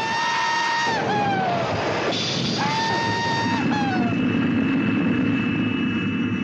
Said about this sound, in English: Where target is in sight, the doors open, the bomb drops, he rides the bomb down, waving his hat and screaming.